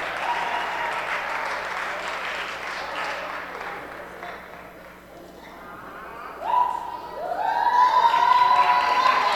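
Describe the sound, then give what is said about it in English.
An audience applauds steadily for several seconds, the clapping dipping briefly before swelling again, joined near the end by rising cheers and whoops from the crowd. “Let's welcome them with some applause.”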